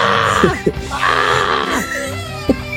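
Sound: man screaming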